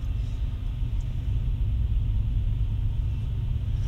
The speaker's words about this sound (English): Oh, but yeah, the train is passing by now.